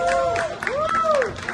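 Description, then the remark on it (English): A short burst of applause and crowd noise, steady clapping mixed with rising and falling whoops or cheers on top, fairly loud throughout. “Now, round of applause, everybody, for the first time.”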